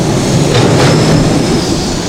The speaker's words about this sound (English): So, some good sounds of the city. That was Rizzo's dump truck going past, and that was a really low frequency sound, and that's very characteristic of a city. So the sound signature of cities is a great mire of low frequencies.